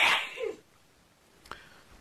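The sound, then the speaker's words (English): A single sharp sneeze bursts out, loud and breathy, followed by near silence and a faint click a moment later. “God bless you.”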